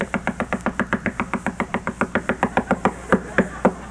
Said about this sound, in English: And please understand, I'm not against knocking on doors. There are people who just love to knock on doors.